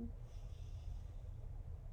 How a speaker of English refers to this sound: Breathing out, breathing in, breathing out, final breath in,